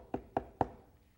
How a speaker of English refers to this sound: And one Saturday morning, the police knock on the door.